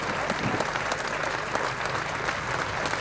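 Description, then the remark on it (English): Steady crowd applause fills the whole clip, a dense rattle of many hands clapping at an even, sustained level with no voices standing out, at the unveiling of the Jimmy Murphy statue at Old Trafford. “Come on, a nice round of applause, ladies and gentlemen.”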